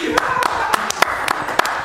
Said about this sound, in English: I wanted to start an applause.